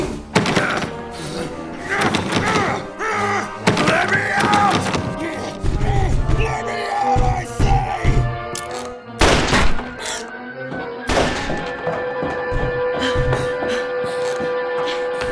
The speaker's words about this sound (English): what was that noise? Were those gunshots?